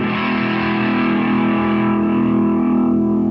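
An electric guitar on its neck pickup sustains a thick, distorted chord with steady low-mid harmonics and no talking, ringing at an even volume for a few seconds.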